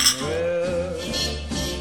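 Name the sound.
glasses clinking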